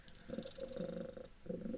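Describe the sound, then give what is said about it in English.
A cat purring, a steady rumbling with soft rhythmic pulses, heard alone without any voices. “And the kitties just come around one last time to say thank you and sleep well.”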